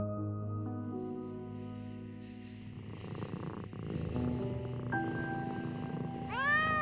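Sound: cat meowing and purring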